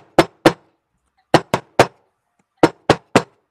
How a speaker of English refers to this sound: So in the Golden Dawn, in the Golden Dawn temples, during the rituals, there's a series of the knocks. You might knock, you know.